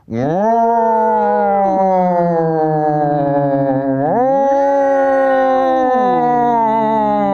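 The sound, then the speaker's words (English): A voice imitates an air raid siren, holding a loud, steady wailing tone that dips lower, then swoops back up in a rising glide and slides down again, sounding rather like a howl. “We are sponsored by, Raid Air Sirens. Okay, yeah. Like the kinds that go...”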